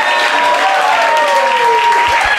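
An audience at a comedy fight event applauds and cheers loudly as it votes for the winner of the round, a dense wash of clapping with whoops and shouts rising above it, steady for the whole stretch.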